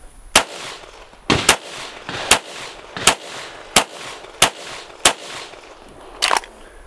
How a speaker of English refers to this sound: So first part of the warm-up drill is picking a dot, and we're just gonna bang out 3 to 5 rounds, shake it out, and do the same thing again.